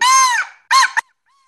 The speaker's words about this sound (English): This is a crow call.